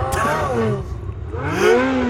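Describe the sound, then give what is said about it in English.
A Ferrari sports car engine revs, its loud growl climbing in pitch, dropping back, then surging again in a second rev. “Nice car.”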